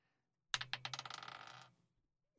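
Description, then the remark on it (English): A d20 die, rolled for an attack in a tabletop game, clatters across a hard tabletop in a quick burst of rattling bounces that speed up and fade as it settles on a natural one, fairly loud, with no talking. “Once I find my d20.”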